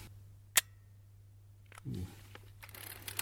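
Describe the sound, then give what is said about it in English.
A single crisp, quiet click of a film camera shutter firing at a shutter speed of 1/500 second after being wound on, followed by a brief low murmur and a few faint handling ticks against a steady low hum. “This camera next. Okay, this is just winding it on. It is wound on. Let's get a suitable shutter speed. 500th should do it.”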